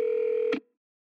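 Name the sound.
telephone call ringing out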